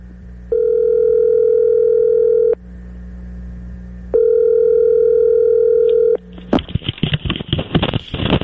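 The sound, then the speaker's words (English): An outgoing phone call to Tiger Woods rings through the line: two long, steady electronic ring tones separated by a pause, then a rough clatter as the receiver is picked up. No one speaks. “And in the stands was Tiger Woods, so we thought we'd call Tiger to see what that was like last night.”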